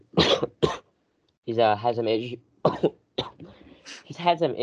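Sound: coughing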